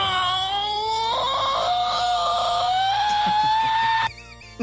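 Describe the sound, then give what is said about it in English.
The cartoon character Lemon Grab lets out one long, loud, shrill scream that wavers and climbs slightly in pitch for about four seconds, then cuts off abruptly. No one else is talking. “So he says, since it was loud as hell anyway, I'd make the Dreamcast startup sound the scream of my favorite animated character.”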